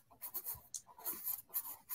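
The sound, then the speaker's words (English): Soft scratching of a pencil moving across paper in short, repeated strokes, with brief pauses between bursts and no voices present, as the trunk and branches of a tree sketch are gone over to make the lines thicker. “I'm going back down to the trunk and just making that a little bit thicker.”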